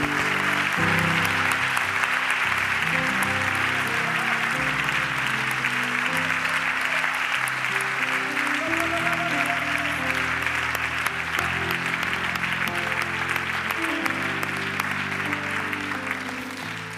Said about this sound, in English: And everybody said a healthy amen. Let's give God one good hand clap.